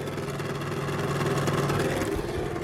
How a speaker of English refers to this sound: So, oh, there's my heater after kicking back in. Shit, give us 2 secs. You can probably hear that.